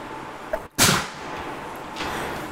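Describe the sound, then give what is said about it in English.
A single sharp sneeze: a short breathy catch, a brief silence, then a loud noisy burst that fades over about half a second, leaving steady low hiss behind. “Bless you. Bless you.”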